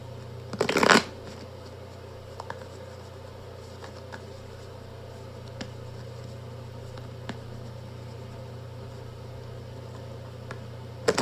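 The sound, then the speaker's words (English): A deck of cards is riffle-shuffled in one quick, loud burst near the start, followed by a steady low hum and a few faint scattered clicks, with no one speaking. “The shuffling is taking”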